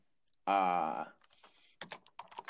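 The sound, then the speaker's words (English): A short burst of voice is followed by a quick run of crisp computer keyboard clicks as someone looks up Dallas's salary cap figure. There are several keystrokes in an irregular rhythm, fairly clear. “the sound of the audio of picking up my typing.”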